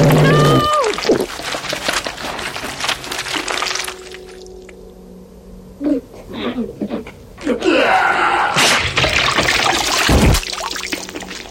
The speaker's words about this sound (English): The gooey sounds